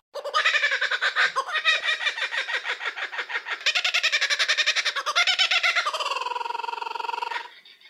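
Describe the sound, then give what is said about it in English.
A laughing kookaburra's loud, raucous territorial call, rapid cackling notes rising into a rolling chorus of hoots and chuckles, continuous for several seconds before ending abruptly. “If you guessed Laughing Kookaburra, congratulations!”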